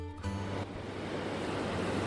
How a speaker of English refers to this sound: Oh, the sun is just absolutely lovely, and I love the sound of the sea.